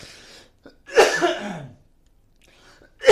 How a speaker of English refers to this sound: I'm coughing.